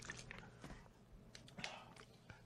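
Close, wet mouth sounds of someone drinking water, with several soft gulps and swallows in an uneven rhythm and no talking.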